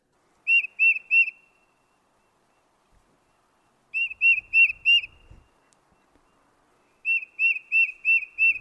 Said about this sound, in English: Is that the tufted titmouse? Tufted titmouse, yep. It is, eh? Because you know what? I know what a chickadee sounds like. You do know what a chickadee sounds like.